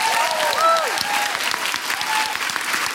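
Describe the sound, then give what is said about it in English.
An audience at the BFI claps steadily in a dense, sustained burst of applause for about three seconds, with a few brief whoops and cheers rising above the clapping. “A big round of applause for everyone at the BFI.”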